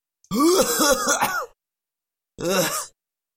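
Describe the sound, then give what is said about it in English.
A person's voice imitates a cat coughing up a hairball: a long, strained gagging and throat-clearing burst, a brief pause, then a shorter retch, loud. “You cough up a lot of these little hairball things.”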